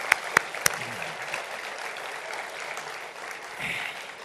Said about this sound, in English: So a clap in advance for him now, because he'll be working in a minute.